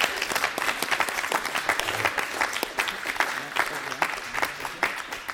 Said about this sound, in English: Well said. So let's give a round of applause for our experts.